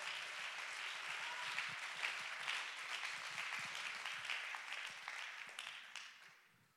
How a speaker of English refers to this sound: Oh, clap your hands and give God the praise.